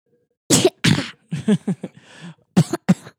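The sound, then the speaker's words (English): Two sharp coughs open the sequence, followed by a cluster of softer throaty hacks and rasps, then two more abrupt coughs at the end, with no speech. “Is talking like that making you cough?”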